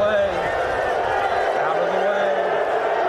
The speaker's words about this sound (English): That was Andrew Luck walking off the field. For the last time. Right. News broke during the game, and he was booed off the field for quitting so close to the start of the regular season.